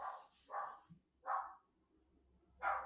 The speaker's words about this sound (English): Oh, sorry, the dog's off again. Dog's off again.